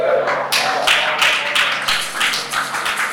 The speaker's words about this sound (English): If you want to clap, clap well. You know, half clap is an attitude. If you want to do it well.